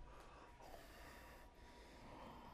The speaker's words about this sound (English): Narrow the aperture of your throat. This is yogic breathing, intentional, deliberate, audible breathing. Call it throat breathing, ujjayi breathing.